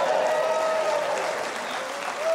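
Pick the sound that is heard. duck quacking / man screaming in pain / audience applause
audience applause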